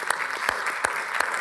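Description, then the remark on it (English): A Southview church audience claps together for the grade school kids joining the weekend service, a steady, dense patter of applause at moderate volume, with a few sharper individual claps popping out at regular intervals. No voices are heard. “Let's give them a round of applause for joining us.”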